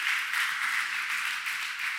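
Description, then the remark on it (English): A crowd gives a round of applause for four guest speakers, many hands clapping together into a dense, even wash of sound that stays at one level throughout with no voices over it. “So we can kind of give them a round of applause.”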